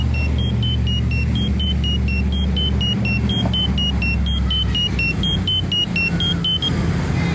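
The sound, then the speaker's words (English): Steady, loud rumble of cars passing through a street intersection on Martha Street while a pedestrian waits to cross, with a high electronic beeping repeating at a regular pace above the traffic throughout. No one speaks. “You hear that traffic also on your left on Martha Street.”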